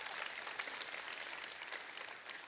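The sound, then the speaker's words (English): An audience claps steadily for a woman being thanked, a dense wash of many hands applauding at an even level for a couple of seconds with no voices on top. “Let's give her another round of applause for all she does.”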